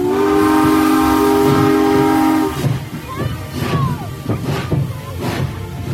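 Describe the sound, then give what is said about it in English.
A loud, sustained steam whistle blows for a couple of seconds, then gives way to the rhythmic chugging and hiss of the Polar Express steam train running. “The train was filled with other children, all in their pajamas and nightgowns.”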